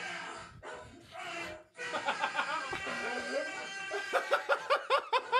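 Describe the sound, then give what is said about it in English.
A dog barks and yelps at a man in a rapid string of sharp bursts, growing into a quick rhythmic run of barks near the end, with what sounds like snickering laughter mixed in. “The dog's barking at him.”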